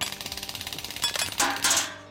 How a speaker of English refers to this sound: A third guard panicked, and he was spraying bullets at the shrine and the altar in an attempt to kill Gulab and Virat.